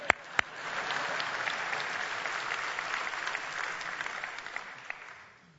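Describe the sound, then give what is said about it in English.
A church audience claps together in a dense, steady wash of applause that holds for several seconds before fading, with a couple of sharp individual claps standing out at the start. “If you're going to clap, we got to clap.”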